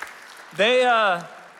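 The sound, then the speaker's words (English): A steady wash of audience applause at Mosaic for students going on spring break trips runs throughout, with a single drawn-out, tonal voice cheering over it for about half a second in the middle. “Yeah, can we give these friends a round of applause?”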